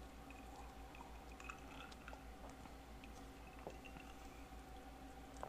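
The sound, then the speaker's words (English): Someone quietly sips a fizzy blueberry soda (Old Soaker from Bar Harbor Blueberry Soda): soft wet mouth clicks, small squishy swallows and faint drips over a steady low hum, with no talking. “So let's go ahead and take a sip, babe. Here we are, blueberry soda.”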